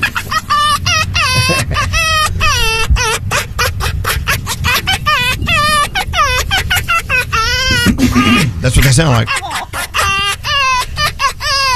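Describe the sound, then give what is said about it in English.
Foxes giggle in rapid, high-pitched chattering bursts, a loud stuttering cackle that repeats throughout, with a person briefly speaking partway through. “we started talking about giggling foxes, so may I present giggling foxes?”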